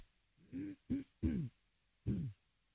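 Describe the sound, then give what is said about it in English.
Someone clears their throat in four short, low, voiced bursts with brief pauses between them, the last coming after a longer gap. No speech is heard. “Sorry, I have to keep clearing my throat.”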